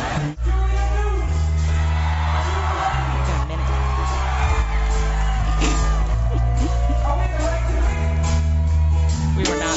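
A concert crowd cheers and whoops steadily over loud music with deep, sustained bass notes that shift every couple of seconds, the noise staying dense and constant throughout.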